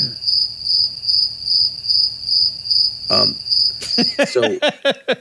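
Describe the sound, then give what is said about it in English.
A crickets-chirping sound effect marking an awkward silence: crickets chirp in a steady, pulsing, loud rhythm with a quiet night-like hush beneath; near the end a few sharp clicking bursts break in as the chirping stops. “So awkward silence, office of crickets there.”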